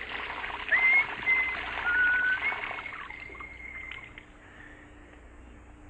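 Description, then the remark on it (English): Shower water runs in a steady, hissing spray, loud at first, then easing to a softer patter toward the end, with no voices. “Major Hall stepped out of the shower, reached for one of the towels on the rack.”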